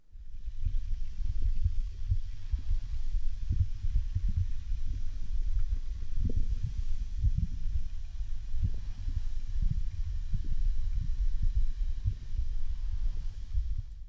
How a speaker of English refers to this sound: The next thing I added was bubbling lava.